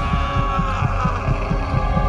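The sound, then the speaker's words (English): An old man's muffled heartbeat thuds in a steady, quick rhythm, its soft, low pulses repeating about four times a second beneath a constant droning hum, with no voices. “But for many minutes, his heart beat on with a muffled sound.”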